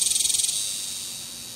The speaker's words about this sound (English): Cicadas make a sound to attract a mate. Only the males in the brood can sing. And when a large number of them sing together, they can reach 105 decibels. That's louder than a lawnmower.